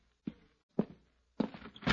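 Two footsteps cross the floor, then a door is opened for someone who has come to it, with a brief rattle and clatter of the latch. There is no talking, just these moderately loud sounds.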